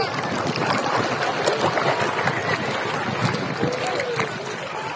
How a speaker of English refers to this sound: The waves are from all the snowmelt flowing into the Great Sand Dunes National Park.